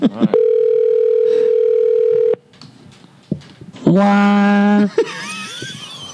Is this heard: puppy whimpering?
no